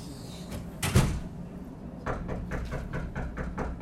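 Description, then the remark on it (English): A single dull thump, then a quick run of about seven or eight even knocks on a wooden door by someone standing on the other side of it, moderately loud and slightly muffled, with no one speaking. “waiting for Brandon Gibson to knock on the door”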